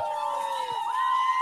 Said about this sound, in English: Sirens are coming for you.